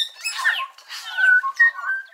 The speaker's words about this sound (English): A forest in New Zealand rings with the sound of bellbirds, whose indigenous name is Korimako.